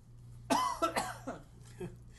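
A burst of several quick, harsh coughs, the first loudest, trailing off into smaller hacking coughs over a low steady hum.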